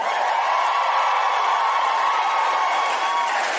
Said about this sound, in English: Oh, thank you for cheering for that part.